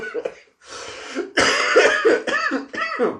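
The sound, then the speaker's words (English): A run of harsh coughs, several bursts in quick succession with brief gaps, loud and raspy, ending in throaty hacking. “See? It gets me so mad I cough.”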